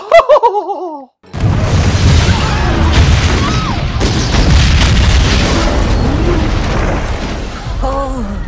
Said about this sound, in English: the same farmers blow up a British supply ship right in front of Cornwallis's stupid face